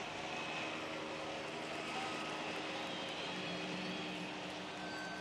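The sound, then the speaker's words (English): An aircraft flying people in drones overhead, a steady, fairly loud engine roar with a faint tonal hum that holds constant for several seconds, with no voices. “it seems there are a few cars blocking the road, so we're flying everybody in.”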